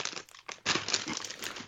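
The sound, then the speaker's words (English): Crinkly plastic chip bag being rummaged through for game pieces, a rapid run of sharp crackles and rustles that swells louder after a brief lull and keeps going steadily, with no voices. “I almost ate my third game piece that I pulled out of this chip bag.”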